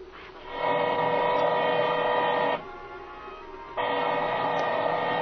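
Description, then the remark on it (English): A drill boring into a safe whines steadily at close range, its tone dipping briefly as the load eases partway through, then surging back to full strength. No voices are heard. “I can't hear nothing with my ear next to this drill.”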